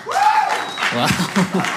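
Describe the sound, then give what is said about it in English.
Scattered applause from a crowd, a steady wash of clapping mixed with a whistle and a few voices calling out over it, as audience members clap to show their high school football team was the Eagles. “Go ahead and clap if your high school football team was the Eagles.”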